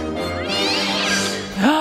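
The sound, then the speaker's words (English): A cat meows loudly and drawn-out, a harmonic wail that bends in pitch, ending with a sharp rising cry near the close, as the Penguin, as a baby in his cage, grabs it; no one speaks. “But he's in the cage, the penguin is, as a baby, and he fucking grabs the cat.”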